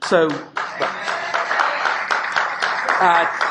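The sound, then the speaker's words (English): An audience applauds in a steady, dense patter of clapping that runs the whole time, with a voice speaking over it at the start and again near the end. “I need nor require nor enjoy any applause.”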